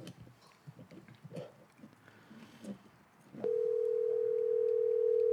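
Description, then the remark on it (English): After a few seconds of quiet, muffled background rumble, a loud, steady telephone ringing tone of an outgoing phone call starts abruptly and holds unbroken, a single continuous pitch, until the end. “Answer the phone.”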